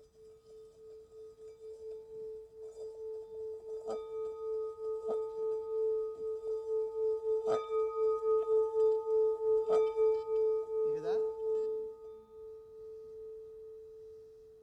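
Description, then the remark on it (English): A singing bowl is struck and then its rim is rubbed around the top like a champagne glass, humming with a steady, pure ringing tone that swells and pulses, a few light knocks sounding along the way, before the note stops and fades. “And then the singing part does this, and I'm doing like a champagne glass around the top.”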